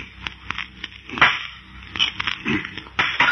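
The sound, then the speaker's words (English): A series of sharp hammer taps strike a metal section at an uneven pace, each a bright, clanking hit, heard over a steady low rumble with no voices. “Now, a couple of hammer taps against this metal section.”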